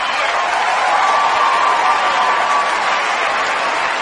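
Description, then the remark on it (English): A large crowd, including Meryl Streep and J Lo getting up, applauds Patricia Arquette's call for wage equality steadily for the full four seconds, a dense, even wash of clapping with a faint murmur of cheering mixed in and no pauses. “When I heard that, when I saw Patricia Arquette and when I saw Meryl Streep and J Lo all getting up and applauding, you can hear the whole room is applauding.”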